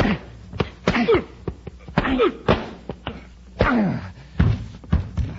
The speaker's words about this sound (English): Hey, Commander. You knocked Graykin cold. Yeah. Let's get out of here before he comes to.